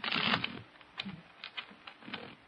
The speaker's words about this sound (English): Now, put it back in the deck. Now, shuffle the cards.